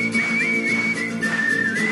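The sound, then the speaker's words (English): A person whistles a bright, wavering melody around a single high pitch, with short bends and slides between notes, heard over soft steady backing music. “There's a whistling bit, you can join in if you like.”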